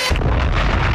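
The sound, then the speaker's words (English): A bomb explosion sound effect bursts in abruptly and stays loud, a heavy, deep rumbling blast that roars for about a second with no voices. “Bomb.”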